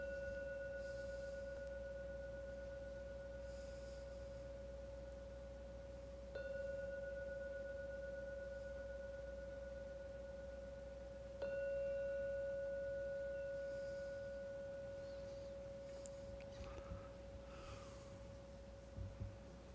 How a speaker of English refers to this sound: So I'm now going to ring the gong 3 times. Please wait for every sound from the gong to vanish before opening your eyes.